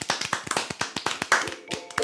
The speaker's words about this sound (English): Hand clap.